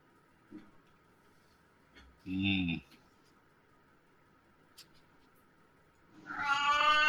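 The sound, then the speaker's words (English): A cat meows twice: a short, clear call, then after a quiet pause a longer, louder, more drawn-out meow. Faint background hum and small clicks fill the gaps. “That definitely not a meowing.”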